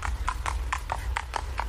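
Steady clip-clop of horse hooves, about eight evenly spaced strikes in under two seconds, over a low rumbling background with no talking.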